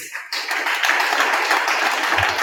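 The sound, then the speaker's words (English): A crowd of people clapping together for God, the dense, steady patter of many hands starting abruptly after a brief lull and continuing loudly without a break, with a couple of low thumps near the end. “Let's clap for our God.”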